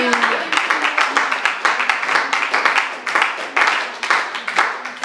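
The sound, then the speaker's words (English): A crowd claps hands steadily for several seconds, a dense, loud patter of overlapping claps with no clear rhythm, while voices murmur faintly underneath. “Let's clap our hands one more time before we see you.”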